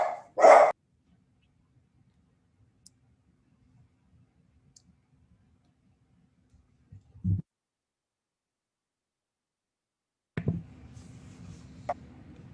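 Dogs bark loudly in a few sharp, separated bursts, one right at the start, another midway, and a rougher flurry near the end, with long quiet stretches between and no talking. The dogs are barking at a noise heard outside.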